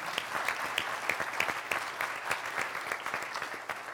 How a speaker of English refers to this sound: I also want to thank our volunteers, because once again, without our volunteers, there's no way that we could do this. So let's give a big round of applause for our volunteers.